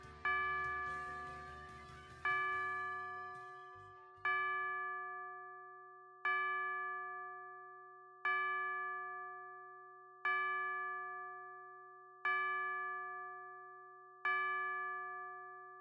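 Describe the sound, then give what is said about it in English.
A clock above a fireplace chimes twelve peals at midnight, slowly and steadily, each ringing bell tone struck about two seconds apart and fading away, while the song people had been dancing to dies out under the first few strikes. “They fell silent, smiles faltering as the clock above the fireplace chimed over the song they had been dancing to.”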